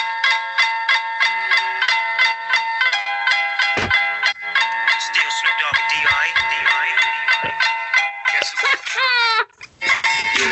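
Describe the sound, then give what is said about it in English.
Tinny, thin-sounding music plays through a phone speaker held up to a microphone: a bright, repetitive electronic melody with no bass, running steadily for about ten seconds and ending in a quick rising flourish. “Not everyone gets intro music. but this one is.”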